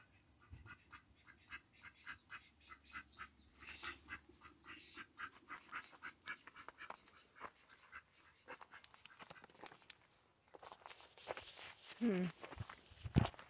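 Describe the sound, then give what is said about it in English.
Chickens cluck and squawk in irregular bursts, mixed with steady footsteps across the ground as someone walks counting the chickens and looking for a missing one, growing louder and busier toward the end. “I'm gonna count for all my chickens. Looks like I can find all of them except for one.”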